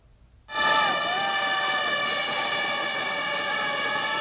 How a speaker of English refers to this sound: The starting horn sounds and the riders are off. Sunday was the first day of the annual Tour de Taiwan road cycling race, and riders from around the world are taking part, hoping to gain points ahead of the next Olympics.